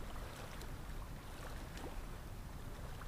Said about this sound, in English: Hearing the ocean waves crash on the shore and recede out.